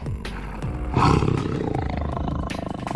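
A tiger's deep, rumbling roar swells up about a second in and then rolls on as a low, growling sound, loud, with no talking.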